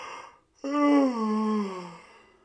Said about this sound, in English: Sorry, I'm always yawning.